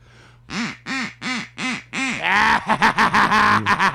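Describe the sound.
A duck quacks loudly: five evenly spaced nasal quacks, then a faster, overlapping burst of excited quacking that runs to the end.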